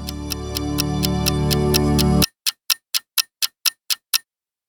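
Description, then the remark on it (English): A clock ticks steadily and briskly, at first under a loud, low droning hum that cuts off abruptly. The crisp ticks then continue alone for a few seconds before stopping into silence. “My clock just stopped.”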